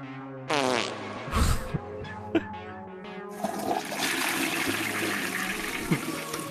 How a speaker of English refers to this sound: who else here has to cut a fart?